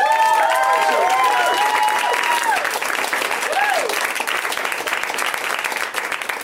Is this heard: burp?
no